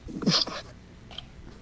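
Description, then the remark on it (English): A cat, Mr. Kitty, chewing on audio gear: a brief loud burst of crunching, rustling noise, then a few faint scattered clicks and scrapes, with no talking. “Is he chewing on shit? He is. He's totally chewing on shit.”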